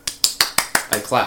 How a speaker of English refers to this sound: I clap.